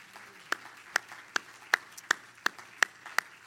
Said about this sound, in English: And everybody clap your hands to the Lord.